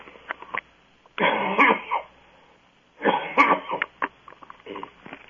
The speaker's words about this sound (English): There's no cough button here on the home phone, so I apologize for that.